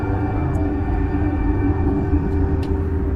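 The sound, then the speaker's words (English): A steady, droning rumble of a tram in motion in a video game, riding back to Central Station, with a constant low mechanical hum and faint tonal whine running unbroken throughout, fairly loud, with no voices. “Let's get on the tram.”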